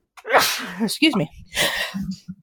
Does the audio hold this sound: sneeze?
yes